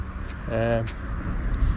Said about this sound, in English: Cars are passing me.